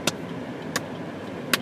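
Steady low rumble of a line of cars approaching on a road toward a driver waiting at a red light, a continuous wash of engine and tire noise, broken by three sharp, evenly spaced clicks.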